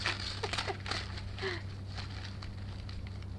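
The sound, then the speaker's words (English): A Christmas gift is unwrapped: tissue and wrapping paper crinkle and rustle in a few quick, irregular bursts during the first second and a half, then fade to a quieter stretch over a steady low hum. “Why'd everybody wrap everything in tissue paper underneath their wrapping paper?”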